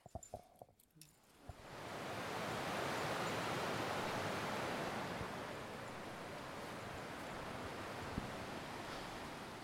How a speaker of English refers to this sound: This is my favorite part of the trail. Feels like we're out west or something. It's like jagged rocks. Water's like rushing over it. We're kind of above it in the hemlocks.